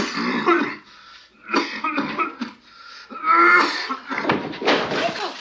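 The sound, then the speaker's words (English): Actor Aidan Quinn, acting as if he has PCP pneumonia, gives a series of harsh, rasping coughs and throat-clearing hacks, fairly loud, in about five ragged bursts with brief gaps, like someone with a heavy chest cough. “And Aidan Quinn is coughing away, acting like he has PCP pneumonia.”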